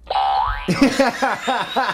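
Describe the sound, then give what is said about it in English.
A cartoon spring boing: a quick rising slide launches into a wobbly, twanging vibration that repeats about five times in an even rhythm, fading slightly as it bounces. No one talks over it. “That's my spring.”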